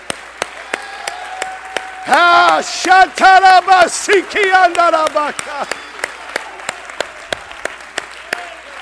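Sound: audience clapping hands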